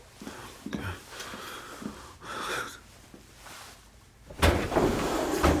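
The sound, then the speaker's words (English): A desk drawer, the second from the top on the right, scrapes open with a long, rough sliding rumble, preceded by a few soft knocks and shuffles. “Now, go to your desk and open the second drawer from the top on the right.”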